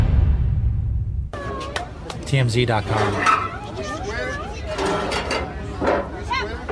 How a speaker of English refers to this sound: See it there? A lion, a white lion in a tiny little cage. For whatever reason, 2 Chainz brought it to a wedding. He's like, you know what? You know what this wedding needs? It needs a big lion in a tiny cage.